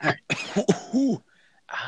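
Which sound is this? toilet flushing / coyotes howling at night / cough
cough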